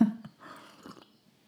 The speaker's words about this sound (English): Coffee sip.